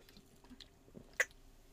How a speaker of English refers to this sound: Take a sip of this.